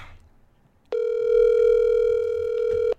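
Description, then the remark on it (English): A single long, steady electronic ringback tone sounds for about two seconds, loud, as a phone call to the speaker's dad rings while waiting to be answered. Faint background hum, no voices. “If he doesn't pick up, it means you don't love me.”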